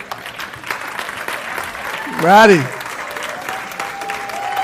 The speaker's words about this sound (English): And happy Mother's Day to our mothers. Can they just stand real quick, our mothers, so we can give you a round of applause?